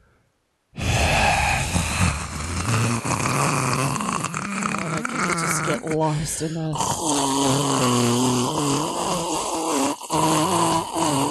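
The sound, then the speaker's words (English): A person makes a drawn-out, breathy, rasping vocal imitation of ocean waves, rising and falling continuously for several seconds, with a few brief spoken words mixed in. “because he's like sitting there listening to the ocean sounds. Do you wanna do that?”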